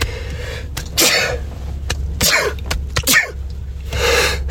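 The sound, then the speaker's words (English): A run of loud sneezes, about four bursts spaced roughly a second apart, each a sharp breathy explosion over a low steady hum, with no talking. “If we don't say bless you, you can go to hell too.”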